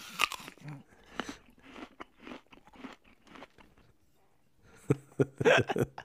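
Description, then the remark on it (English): Wet, crunchy chewing and biting noises, fairly loud, coming in irregular bursts with a short pause before a final flurry of crunches; a sound effect of someone chewing on hands. “I was just standing around chewing on hands.”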